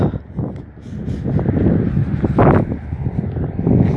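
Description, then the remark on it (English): Gusty wind buffets the microphone outdoors at night, a steady low rumble that swells and eases in waves, loud, with no voices. “It's pretty windy.”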